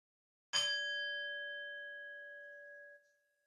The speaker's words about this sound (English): And then we'll begin at the sound of the chime.